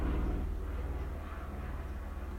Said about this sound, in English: You heard that, right? I'm sure you could hear that. There's some low helicopters that go right overhead. Doesn't really make sense, because there's the Van Nuys. I think the Van Nuys airport's the closest one. That's like 8 miles away, maybe.